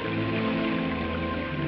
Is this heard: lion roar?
no